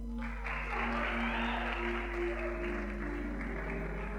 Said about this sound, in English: Clap for him.